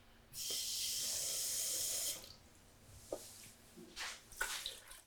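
Cold water pours steadily for about two seconds into an elderflower infusion to bring its temperature down, a bright rushing splash, followed by a few softer clinks and small splashes as the pouring stops and the vessel settles.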